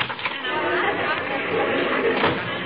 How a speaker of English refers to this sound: My, my. Sounds like a tremendous crowd out there, dearie.